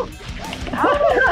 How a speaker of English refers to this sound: take the dogs upstairs. They're crazy.